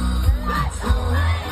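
A loud crowd roars and yells together, a dense wall of many voices screaming and singing along with sustained, chaotic energy throughout.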